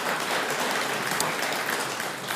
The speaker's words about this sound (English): Come on, somebody, give the Lord a hand clap for what he does. That's good.